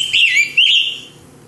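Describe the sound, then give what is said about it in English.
Two short, burry scarlet tanager song phrases ring out clear, one right after the other, each a hoarse, slurred whistle, before the sound fades away. “Scarlet tanager taking a little break here.”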